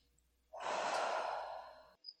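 A single deep breath rushes out loudly for about a second and a half, a broad airy sigh that cuts off abruptly, with no talking around it; a standing person breathing deeply on instruction.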